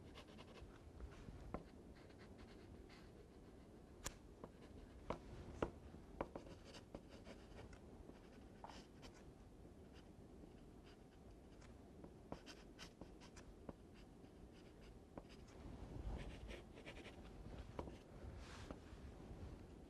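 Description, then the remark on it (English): Soft scratchy rasp of a pencil shading a shadow near a window in a drawing on paper, continuous and steady with small clicks and taps scattered throughout, quiet and without any talking. “I'm going to take this shadow just a little bit more acute near the window, and it fades away as it becomes more neutral.”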